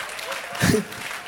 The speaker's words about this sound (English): Clap for Jesus. Hallelujah. Hallelujah.